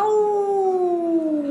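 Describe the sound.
A person imitates a coyote howl with a single sustained, wavering tone that slowly slides downward in pitch, loud and unbroken for about a second and a half, with no other talk.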